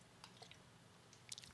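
Quiet sips of carbonated lemonade-flavored and watermelon lemonade seltzer, poured and tried together, with a few brief wet mouth clicks and fizzy crackles scattered over soft background hiss and no talking.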